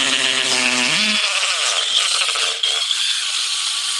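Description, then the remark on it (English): A power drill runs loudly and continuously, its motor whine stepping up in pitch after about a second, then holding a steady, harsh buzzing roar with a rattling edge until the end. “Here we go with the drill.”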